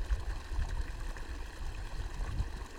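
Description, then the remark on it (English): Steady rushing and gurgling of flowing stream water, continuous, with low rumbling churn underneath and no voices. “Wish you could be here to see this water.”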